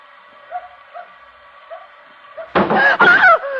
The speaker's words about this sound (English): Something hit the back of the car. It's her. She'll kill us.